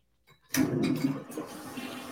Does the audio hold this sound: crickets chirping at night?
no